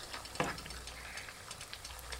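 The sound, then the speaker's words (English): Pancakes frying in oil in a pan: a soft, steady sizzle with scattered crackles and one sharper clink near the start, fairly quiet with no voices. “All right, I'm gonna call the frying of these pancakes done.”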